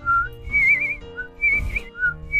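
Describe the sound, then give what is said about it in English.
A person whistles a cheerful birdsong imitation of a bird doing her best to sing a happy song: a string of short, high, warbling notes, some sliding upward, repeated in quick bursts over a soft low background. “Charlotte didn't feel quite so special now that she'd seen a flying snake, but she kept on flitting about, doing her best to sing a happy song.”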